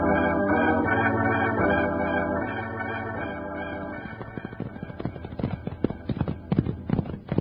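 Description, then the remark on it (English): A sustained musical passage gives way to rapid, irregular hoofbeats as horses gallop in pursuit of a rider on a white horse, with loud clip-clopping that builds over the last few seconds. “He's riding a white horse. Run for the horses, Jingles.”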